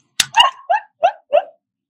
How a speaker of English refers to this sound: Otter button. Damn it! Apparently, otters are angry quite often. There's a lot of, Is this how the angry otters sound? Yes!